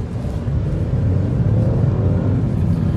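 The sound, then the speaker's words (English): A Mini Cooper's engine drones steadily as it pulls out and drives with the sunroof open, a loud, continuous low rumble with a slight rising hum, and no voices. “Just now pulling out, and we're gonna roast some gears”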